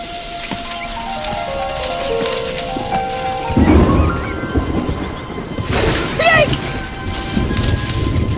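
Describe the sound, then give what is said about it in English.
A thunderstorm with steady, hissing rain and a loud rumble of thunder midway, followed by another surge of storm noise, with faint tonal music or vocal sounds drifting underneath. “A storm and good storm!”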